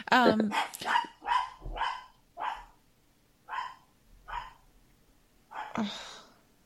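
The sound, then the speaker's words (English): A dog barks repeatedly, about eight sharp barks in an uneven series with short pauses between them, moderately loud. “That's what happens. We get dog barking.”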